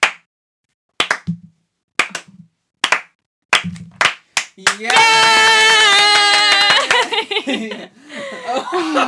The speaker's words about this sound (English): Slow clap.